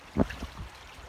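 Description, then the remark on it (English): Soft, gurgling creek water with a few brief splashy bursts close together, fairly quiet, with no one talking. “So this has been a podcast from a creek.”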